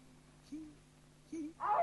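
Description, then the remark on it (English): In a film, a dog looking for its food howls in a short, rising wail that swells loudly at the end, after a couple of softer low whines and a faint steady hum underneath. “What's up with the dog howling?”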